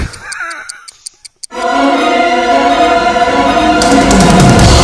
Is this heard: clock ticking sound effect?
yes